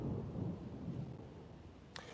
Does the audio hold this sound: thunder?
yes